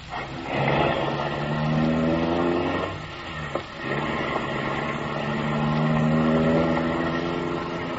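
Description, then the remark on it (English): A car engine revs up loudly and pulls away, its tone climbing as it accelerates, dipping briefly around the midpoint, then rising again in a second steady surge. No one speaks. “The car motor is idling.”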